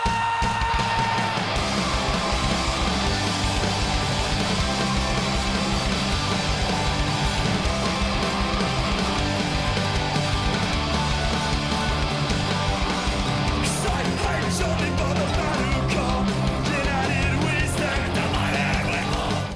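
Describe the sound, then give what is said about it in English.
A loud, chaotic live rock band plays nonstop, with dense crashing guitars and drums and rough, shouted vocals that fill the whole stretch at steady volume. “This is like a live version? Yeah, it's a live version. It's very chaotic.”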